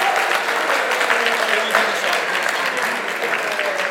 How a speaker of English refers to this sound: Come on, let's cheer them to the finish. Go on, guys.